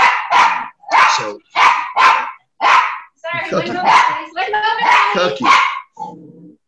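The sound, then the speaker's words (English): A dog barks repeatedly in sharp, loud bursts, about six quick barks in a row, followed by a more continuous stretch of barking and yelping that trails off. “Cookie, don't you know that I'm doing a Zoomy podcast thingy? Don't you know enough to bark?”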